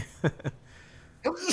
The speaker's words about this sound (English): bless you. Sorry. One more. There you go.